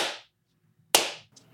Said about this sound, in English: And somewhere off to the side of this message of love and unity between farmers and cowmen, a Native American is giving a slow clap.